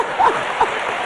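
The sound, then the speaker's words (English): A crowd at a 2004 women's church conference applauds God with steady, dense clapping that sounds like a patter of rain, swelling briefly at a couple of moments before holding level. No one speaks over it. “Let's give God a hand for being smart.”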